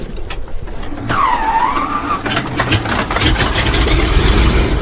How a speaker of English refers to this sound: With a shove, the float plane taxis to the far end of the lake, where a pair of red-throated loons watches with alarm.